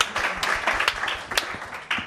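A crowd claps in steady applause, a dense patter of many hands with occasional sharper, louder claps standing out, continuous and fairly loud throughout.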